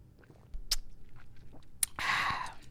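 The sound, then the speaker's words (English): Wet mouth sounds of someone gulping Merlot wine from a small bottle from a four-pack: a few soft clicks and swallows, then a louder, breathy rush near the end. No talking. “Let me take another gulp. I'm about to finish this daggone little bottle.”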